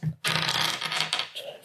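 Dice clatter and tumble across an octagonal dice tray in a quick, rattling burst that settles over about a second and a half, fairly loud.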